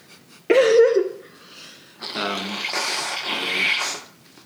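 Two loud sneezes, a short sharp one followed a second later by a longer, breathy, noisy burst, with no talking.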